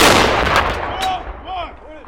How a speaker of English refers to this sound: And I wouldn't have heard the presidential salute battery.